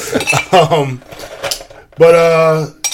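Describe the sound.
Ice clatters and clinks into glasses in a few quick bursts, while a voice hums or vocalizes over the rattling in sustained, tuneful tones.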